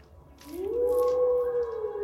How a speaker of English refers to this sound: And one of them begins to descend down the hill towards the edge of a ridge overlooking the lake below, kind of howls out into the water one more time.